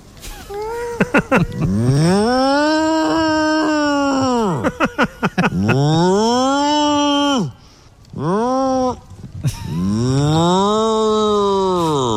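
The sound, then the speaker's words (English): A person in a field imitates a cow to summon Frisian cows, with several long, drawn-out moos, each voiced call rising and falling in pitch with rich harmonics, separated by short breaths and throaty stutters. “The best way to summon them is to moo.”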